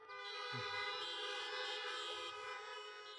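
A chorus of car horns blares at once as people over 40 at a gathering honk when asked, many overlapping tones held in a loud, continuous wall of honking that barely lets up from start to finish.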